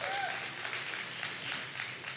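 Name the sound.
audience cheering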